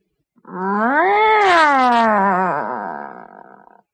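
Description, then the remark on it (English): A single long, drawn-out, dissatisfied cat meow, rising then sagging in pitch with a wavering, complaining tone, loud, lasting a few seconds and trailing off at the end. “Okay, then we have the dissatisfied meow.”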